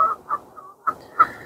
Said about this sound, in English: I'm sure there's a couple of day anglers on the thingy lake, but that is it, really. Just me and the geese.